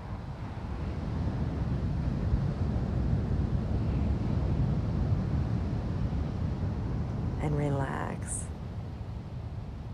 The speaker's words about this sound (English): the churning of the ocean, the noisy waves, the power.